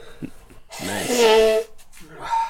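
A man blows his nose in one loud, honking burst lasting about a second, framed by shorter snuffling, breathy noises before and after.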